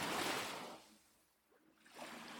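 Soft ocean waves wash onto a beach with a broad hiss, ebb away into a brief lull, then swell again, a steady, gentle surf heard alone.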